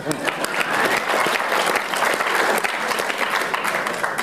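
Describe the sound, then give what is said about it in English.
Steady applause from an audience, a dense patter of many hands clapping at a fairly even loudness for several seconds, with a faint murmur of voices mixed in. “Little applause.”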